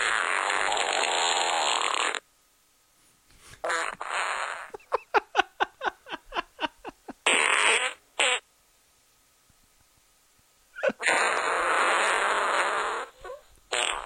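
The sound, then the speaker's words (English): A long, loud, comedic fart: a sustained raspy blast, a rapid sputtering series of pops, then more drawn-out blasts after a pause. Prominent, with no talking. Blamed on Domino's pizza eaten earlier. “No, I was trying to tell you a joke, but it turned into a giant fart.”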